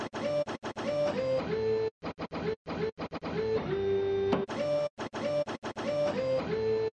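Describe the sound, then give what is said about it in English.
A looped recording of a printer starting up and printing, chopped up and rearranged into rhythmic mechanical bursts with abrupt silent cuts, over steady buzzing and short whining tones that give it a percussive, faintly melodic feel. “I just recorded my printer doing some printing and starting up and all the weird sounds that I'm sure you'll know a printer makes”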